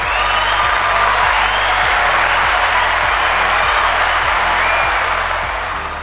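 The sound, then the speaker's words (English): A sustained round of applause from a large crowd, dense and loud throughout, with a few whoops and cheers mixed in before it begins to fade slightly at the end. “Round of applause.”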